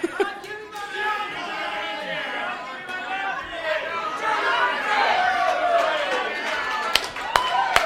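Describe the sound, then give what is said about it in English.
A large audience standing on their chairs shouts the prayer "God, give me my mountain!" together, many overlapping voices calling out at once in a loud, continuous, slightly disordered swell, with a few sharp claps cutting through near the end. “Stand on your chair, ignore the rest of us, and say, "God, give me my mountain! God, give me my mountain!"”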